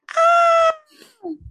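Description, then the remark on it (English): A person imitates a scream: one loud, sustained, shrill vocal cry lasting about half a second, then trailing off into a falling, fading wail. “Insert another scream here. That's a terrible scream.”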